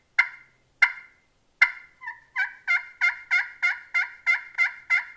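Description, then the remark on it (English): Turkey clucks played on a friction call with a striker: three sharp, well-spaced clucks, then a quick, steady run of softer repeated calling notes, clear with no talking. “I probably need to rub the striker down a little bit, but. Little cluck.”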